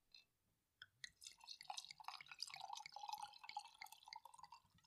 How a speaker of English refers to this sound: All right. Let's pour it up.